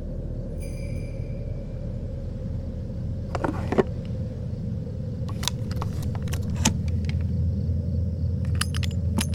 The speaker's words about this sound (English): He swears he witnessed something roughly human-sized, dressed as his old Harlequin toy, emerge, hopping on one leg before the silhouette scurried out the front door, the bells around its neck jingling after it into the early dawn.